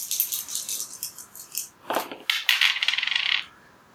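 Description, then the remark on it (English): A handful of dice rattle and clatter across a hard surface, with a sharp burst of tumbling clicks before they settle and go quiet. No one speaks. “Yeah, so make me that roll with that many dice.”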